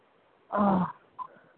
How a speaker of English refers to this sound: I muted everybody, so it has to be that snoring has to be for my line. Sorry, guys.